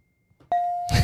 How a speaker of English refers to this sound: Your phone gave it away. Ding!